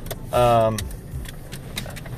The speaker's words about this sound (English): Woohoo! Car passed me one, car passed me two, car passed me three, car passed me four.